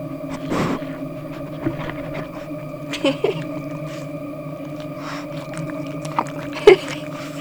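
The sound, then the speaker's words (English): A small female dog, Lana, makes drawn-out, high-pitched whining vocalizations, steady and tonal, broken by a few short, sharper yips spaced across several seconds. “One was to talk about my dog more. Okay, she's small and really heckin' cute.”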